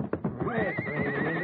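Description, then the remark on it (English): A horse lets out a loud, wavering whinny, preceded by a few sharp thumps and scuffling as it is whipped with a quirt, with no one speaking. “Fight that horse again, and I'll take that quirt and use it on you.”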